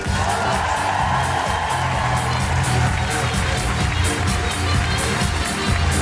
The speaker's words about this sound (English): Then you will need to join me in clapping your hands and making incredible woohooing noises for the one, the only, the amazing,